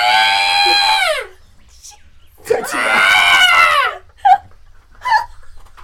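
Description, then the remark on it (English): A person shrieks out two long, harmonic monster-like screeches, loud, mimicking a creature's cry, followed by a couple of short higher yelps. “Most everybody would hear some screeches.”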